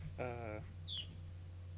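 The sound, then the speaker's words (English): A faint bird chirps briefly: a short buzzy call followed by a single high, downward-sliding chirp, over a low steady hum. “That fucking bird is back.”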